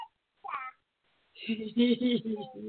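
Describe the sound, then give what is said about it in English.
A baby babbles excitedly at the sight of a cat, first a short squealy rising cry, then after a pause a run of loud, high-pitched, wavering vocal bursts. “I love the sounds of little babies.”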